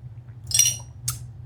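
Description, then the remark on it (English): Someone takes a sip of a matcha drink: two brief, airy slurping bursts with a faint cup clink, over a steady low hum and no talking. “Wait, let me get a sip of my matcha. Hold on. ASMR.”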